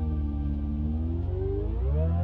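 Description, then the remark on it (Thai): A reverb-drenched guitar effect from an EarthQuaker Devices reverb pedal swells into a sustained, squealing whale-like wail, its layered tones slowly gliding upward over a low droning bed, loud and continuous with no voices. “ไอสัตว์เนี่ยเป็นสิ่งเหม่อหมอยมากเพราะตอนนั้นเนี่ยกูซื้อรีเวิร์บเพราะสิ่งนี้แหละทำเสียงวีดอะ เฮ้ยทั่วไปทำไม่ได้ด้วย”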